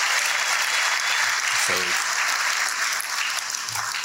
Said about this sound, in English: So thank you. Thanks for that applause. They deserve more than that. And they really are, not that you know, they deserve more than that applause.